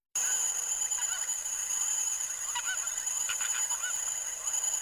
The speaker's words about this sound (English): That's a flamingo. That is a flamingo.